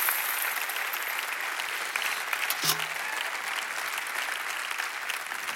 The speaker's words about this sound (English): And every single hand clap is from my Lord and Savior Jesus, who sets the slaves free.